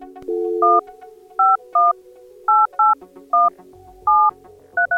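A phone keypad being dialed to call Keith's personal cell phone: about nine short, clear touch-tone beeps in an uneven rhythm, loud, with a faint low hum underneath and no one speaking.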